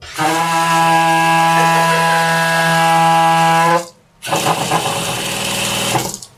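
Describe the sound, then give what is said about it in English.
Household water pipes with air in the lines, known as water hammer, groan with a loud, steady, resonant hum for several seconds, break off briefly, then resume as a rougher, rattling rush through the lines. “It's simple home plumbing with air in the lines. An issue plumbers call water hammer.”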